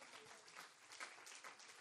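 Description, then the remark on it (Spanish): An audience claps for the Lord together in a dense, steady wash of applause that holds evenly for a couple of seconds, with no one speaking over it. “Dele un aplauso al Señor, amén.”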